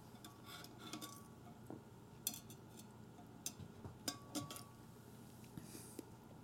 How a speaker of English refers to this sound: Matter of fact. Let me take another sip.